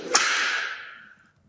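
A single sharp whip crack snaps out loud, followed by a bright hissing tail that fades away over about a second, with no voices around it.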